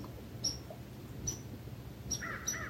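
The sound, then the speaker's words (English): Crows caw a few times over a low outdoor rumble, the harsh calls coming in short scattered bursts, faint, with a longer call near the end. “Perhaps the commotion with the crows is that fear of love, the fear of letting go of judgments, the fear of this magnificent presence.”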